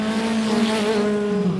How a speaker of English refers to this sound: Why do they have to make cars sound like they're built for the racetrack nowadays? It's for the youngsters, I suppose.